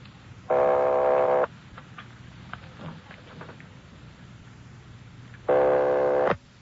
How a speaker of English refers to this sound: Ringing 761. They're ringing the number, Sergeant.